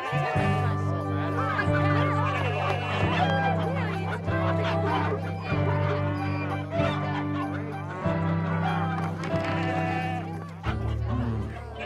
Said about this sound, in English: But look, it's like an animal farm in here. This bird is 12 drachmas.